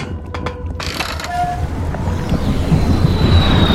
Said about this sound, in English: A narrow triangle-shaped aircraft was falling flat out of the sky. It was a deep cobalt blue and seemed to be spinning tightly on its own axis like the minute hand of a clock quickly spinning backwards.